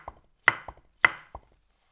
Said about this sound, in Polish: Pociąga się tu za snurek, pasca kłapie.